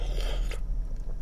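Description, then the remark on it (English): Wet mouth sounds of someone drinking water, a brief burst of slurping and swallowing for about half a second, then quieter low gulping with no talking. “My mouth is really dry right now. Let me get some water.”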